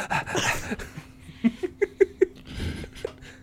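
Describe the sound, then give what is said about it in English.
A person mimics a dog with a quick run of about five short, yappy barks, fairly loud, after a stretch of breathy vocal noise. “Woof.”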